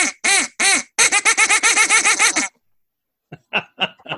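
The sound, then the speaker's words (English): A person imitates a duck call: a few drawn-out nasal quacks, then a rapid rattling run of about a dozen, a pause, and several shorter, softer quacks. Loud, no talking. “Can we get one last duck call, please?”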